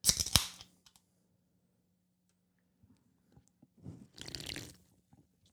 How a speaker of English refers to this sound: So let's clink it real quick.